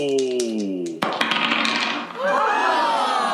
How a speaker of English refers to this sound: Roll that dice. A physical dice this time. Roll that physical dice. Please don't steal it. My friend, that is a nat one. A nat one? That is a critical failure.